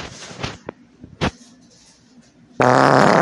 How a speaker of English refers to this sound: He is in the house. He's really been letting farts out lately. So, oh my gosh.